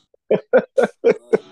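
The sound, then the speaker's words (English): Five short, forceful coughs burst out in quick, even succession, fairly loud, with no talking around them. “Touch everything. Cough on it.”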